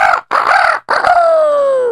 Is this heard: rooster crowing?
yes